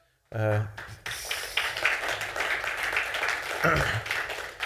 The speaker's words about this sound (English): Hey, good job clapping too, because they might be watching this morning.